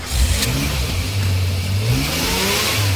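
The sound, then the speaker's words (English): A car engine revs loudly, its pitch rising and falling in a few throaty surges over a steady rumbling idle, with no one talking. “Start your engines.”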